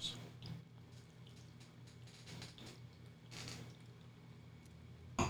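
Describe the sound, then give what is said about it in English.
Quiet gulps of water being swallowed from a wine glass in a few soft wet pulses over a low background hum, ending with a brief louder clink or bump. “I'm chugging water here, guys.”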